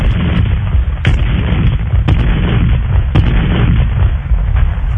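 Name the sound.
cannon fire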